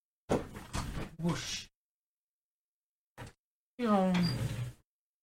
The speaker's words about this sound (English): I'm going to shut my door.